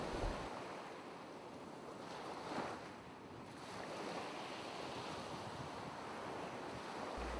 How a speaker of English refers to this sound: I want you to close your eyes, imagine the cool waves, and enjoy your listen.